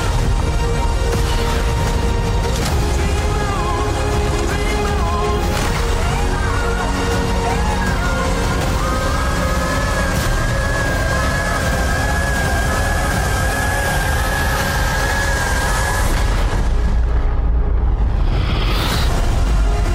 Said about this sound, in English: Right, so that was the trailer for The Creator. Reading the description from IMDb, against the backdrop of a war between humans and robots with artificial intelligence, a former soldier finds the secret weapon, a robot in the form of a young child.